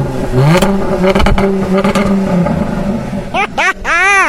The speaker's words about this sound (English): The car say Popple. Go blip the throttle then. Go on. Oh! I just saw something. Again, go on.